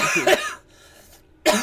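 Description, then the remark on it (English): A person coughs while smoking: a harsh, raspy burst, a brief quiet gap, then another sharp cough starting up. No speech. “If you don't cough, you ain't smoking right.”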